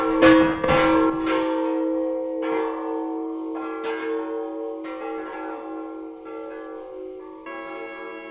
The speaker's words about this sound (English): You're 86 feet to right here. It's 97 feet to the top of it. chimes are up in here. They're oxygen acetylene models. Ring them for you.